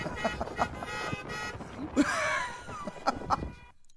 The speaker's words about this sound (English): Play it for me. I love the horns. There's the Biden bus right there. Look at there's Trump people right in front of it.